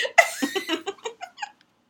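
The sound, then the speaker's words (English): A cat gives a quick run of short, chattering meows, about eight cries in a row that grow softer and trail off, with no talking. “Let my cat out of the room.”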